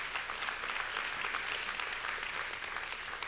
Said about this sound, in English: Want to welcome our Appleton campus, our online campus today. Germantown, can we give a huge round of applause to everybody?